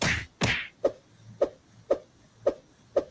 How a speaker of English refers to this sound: All right, so I'm punching.